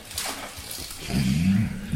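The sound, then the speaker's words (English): A low, gurgling stomach rumble rises after a second of quiet hiss and carries on as a throaty, wavering growl for nearly a second. No one talks. “Was that your stomach rumbling?”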